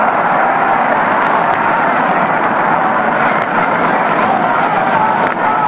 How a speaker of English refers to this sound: There's a smash out in the left center field. Everybody after it. Moore running. Moore makes the catch. It's to the roar of the crowd.